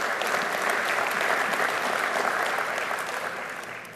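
A church audience applauds steadily for about four seconds, rejoicing over a family's covenant child, a dense wash of many hands clapping at full strength before it begins to thin and fade slightly at the end.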